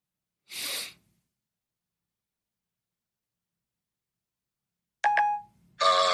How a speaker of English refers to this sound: Why did it beep though?